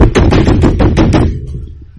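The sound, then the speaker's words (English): A quick run of about six loud knocks on a door, rapped in a fast, insistent rhythm before trailing off into a dull low rumble. “I thought I locked that door again. Who is it?”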